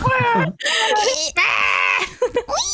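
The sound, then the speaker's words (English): A person practicing a goat scream imitates a screaming goat, letting out several loud, strained, wavering bleats in quick succession, with short gaps between them. “You need to practice your goat scream.”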